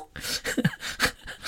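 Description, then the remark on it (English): A voice imitates the throaty coughing and spluttering of a horrible old man with phlegm in the throat, a quick run of rough, breathy hacks and sputters in uneven bursts lasting about a second and a half, moderately loud. “Otherwise, I'll be sounding like a horrible, horrible, horrible old man, coughing and spluttering and going...”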